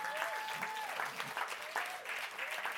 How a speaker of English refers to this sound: I love here on Sundays how when you come and you see the dream team serving, come on, let's clap our hands for the dream team.